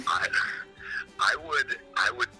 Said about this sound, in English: And you said, my life won't be fulfilled until my house is full of horns. I want every step in my home to come with a horn sound.